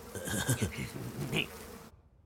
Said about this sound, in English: I got the bees.